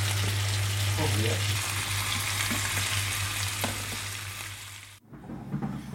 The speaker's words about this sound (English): They all fit rather nicely in the pan, and it is. So there we go. Fish frying in the pan. Yeah.